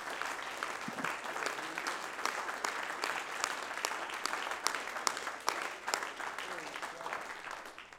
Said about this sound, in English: Would you clap your hands unto the Lord right now?